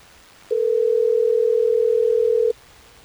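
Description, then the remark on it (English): A single steady telephone ring tone, one unbroken two-second burst at moderate loudness against a quiet background, with no voices, as hosts of radio station Hot 101.5 in Tampa Bay place a call. “Let's get Christina on the phone.”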